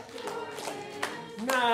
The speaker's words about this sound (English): You ready? If you love Jesus, clap your hands.